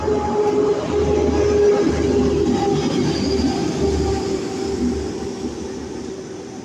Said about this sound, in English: There's a big truck going by. You see that shit? It said, what if waste powered your community?